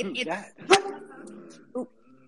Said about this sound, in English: Was that your dog? Yeah, it's my amazing dogs.